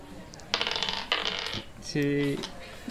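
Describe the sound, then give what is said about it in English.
A handful of dice, rolled for a dexterity athletics check, clatters and rattles across a hard tabletop in two quick rolling bursts, fairly loud, followed by a brief low hum near the end. “Okay, this is a lot of dice.”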